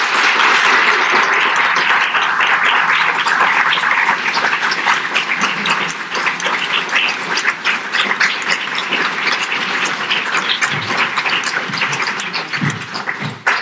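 An audience applauds loudly and steadily for over ten seconds, a dense wash of many hands clapping that thins slightly toward the end, where individual claps stand out.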